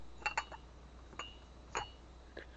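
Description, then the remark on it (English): Ceramic coffee cups clink together in a toast in a few light, bright taps, a quick pair followed by two more separate knocks, with no talking. “Coffee? Cheers.”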